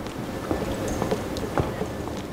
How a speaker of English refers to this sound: It's so empty there in some parts of the museums, you can actually hear your own footsteps.